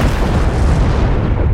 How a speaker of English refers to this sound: A crack and a rumble, like lightning and thunder. The assembled scientists could see and feel and hear. It worked. They had just detonated the world's first ever atomic bomb.